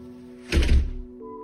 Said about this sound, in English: I slammed the front door, cutting off the flow of bullshit.